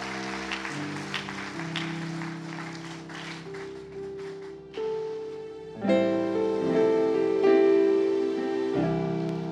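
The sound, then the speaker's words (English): An audience claps steadily over held keyboard chords for several seconds, welcoming a choir before its song ministration, then the clapping fades as louder, richer sustained organ-like music swells and continues alone. “Welcome the choir with a round of applause.”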